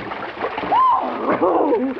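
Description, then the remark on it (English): Busy splashing and sloshing as someone gets into very deep water to swim, the churning lasting about two seconds, with a couple of brief voiced exclamations over it. “Come on, let's get in.”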